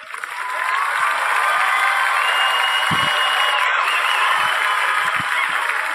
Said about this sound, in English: Let me do a little like clapping for you and cheering.